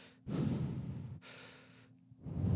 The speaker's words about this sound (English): You know, just over and over, real slow, in and out, through the nose, out the mouth